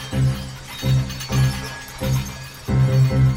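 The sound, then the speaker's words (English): A wine glass played with a bow gives a series of resonant, humming tones in steady rhythmic strokes, swelling and fading about twice a second, moderately loud with no voices. “A wine glass is being played by a bow.”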